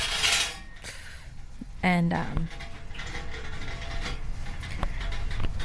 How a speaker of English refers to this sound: But that's just somebody with a cart.